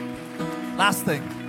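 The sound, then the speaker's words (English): A crowd gives a quick hand clap at the speaker's request during a sermon, a dense, steady patter of many hands, with a voice speaking over the applause. “Now watch, before we finish, yeah, give me a quick hand clap.”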